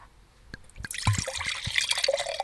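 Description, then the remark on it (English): Rosé wine pours steadily from a heavy glass bottle into a glass, a bright gurgling splash that builds after a few soft clinks and drips, filling the glass with a rising, bubbly trickle. “Gotta say, for us sitting here watching, that was like delayed suspense, waiting for waiting for the sound of a heavy, expensive glass bottle, a carbon footprint sin pouring out rosé, frivolous rosé into a fancy.”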